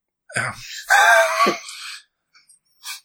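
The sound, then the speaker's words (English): A single drawn-out yawn, starting with a sharp breathy intake and stretching into a moaning, voiced exhale, followed by a couple of faint breaths. Fairly loud, with no talking. “You guys seem not stunned. I feel yawns.”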